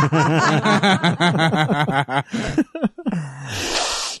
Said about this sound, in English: Oh, so one funny thing that I like your sniffing there, the addictions.